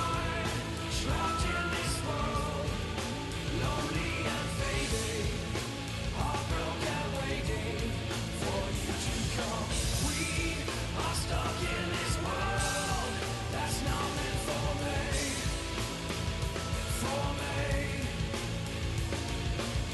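A loud, dense metal rock song plays for the full twenty seconds: wall-to-wall distorted guitars and driving drums at steady volume, with harsh, yelled vocals cutting through.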